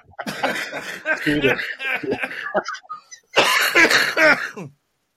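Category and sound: human body sound, man coughing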